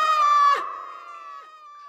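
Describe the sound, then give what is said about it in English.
A girl lets out a single loud, high-pitched scream that holds for about half a second, then rings on in a long, fading echo throughout a cave. “screamed as loud as she ever had.”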